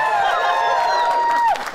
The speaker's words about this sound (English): Big cheer for Rob Shearman.